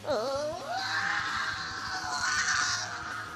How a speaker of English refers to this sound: Rocky, in a panic, quickly turned around and screamed as he ran back to the safety of Tommy and Lemur.